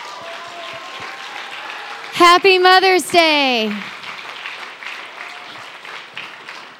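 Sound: audience round of applause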